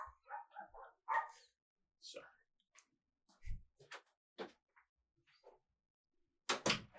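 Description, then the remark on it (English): A dog barks in a few short, sharp bursts spread across the moment, with people talking and a louder bark or two at the very end. “Yeah, that he was known to bark like a dog, so that's his letting us know.”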